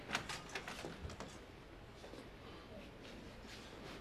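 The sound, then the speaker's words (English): An office door opens with a few quick clicks and scrapes at the start, then a soft, steady rush of room noise lingers. It sounds fairly quiet, with no talking. “come in. Leave the door open.”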